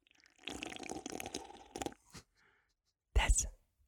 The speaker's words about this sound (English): I'm pretty sure everyone's turned off the podcast by this point, especially with that horrid slurping sound.